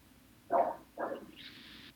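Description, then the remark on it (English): A dog barks twice in quick succession at moderate volume, followed by a brief higher-pitched whine, with no talking. “You can always hear mine bark.”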